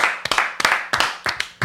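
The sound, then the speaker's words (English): People clap in a quick rhythmic pattern, sharp loud claps falling in pairs and singles about every third of a second, with no talking, cheering for an upcoming live show. “Let's clap it out.”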